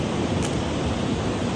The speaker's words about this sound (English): But yet the waves come in, you know, and there's like a part of us that is still.